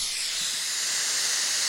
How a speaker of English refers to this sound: That's white noise. You hear the difference? Mm-hmm. That's more interrupting, I think. Yeah. It's more it sounds like pitch. A vacuum.